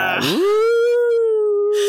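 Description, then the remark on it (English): A person imitates a wolf howling: one loud howl that swoops upward and then holds a long, steady note, with brief noise at the start and end. “That's my wolf howling at the moon.”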